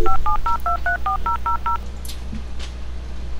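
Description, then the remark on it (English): A quick run of about eight touch-tone telephone beeps, each a short two-note chirp in steady rhythm, followed by faint clicks and a soft rustle against low background hum. “Is it ringing?”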